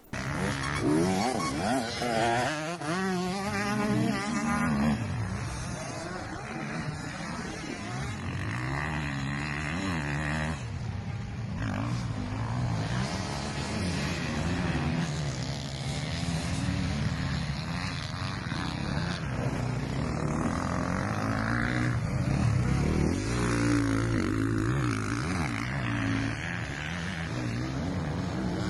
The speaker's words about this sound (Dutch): Herlings weer terug op de motor zit. We hebben een filmpje van hem op weten te pikken